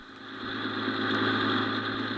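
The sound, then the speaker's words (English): A free sightseeing bus run by the local Chamber of Commerce, touring the city, idles with a steady, low mechanical rumble and a constant droning hum, holding an even loudness throughout with no voices. “So let's go back a few hours and board one of these buses as it makes its way around our glamorous town.”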